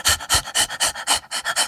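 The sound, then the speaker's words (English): Rapid, rhythmic panting, about eight quick breaths in under two seconds, a person imitating an excited puppy's pant. “Yeah, heavy breathing and then shouting puppies, possibly not the best introduction.”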